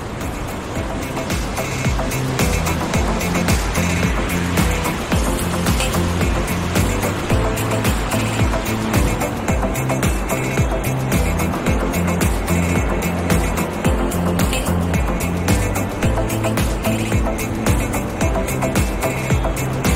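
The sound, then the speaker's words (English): A loud, steady roar of rushing water fills the whole stretch, a dense continuous wash of noise that never breaks or fades, with no voices, heard at a viewpoint reached on a hike. “Just listen to that water roar.”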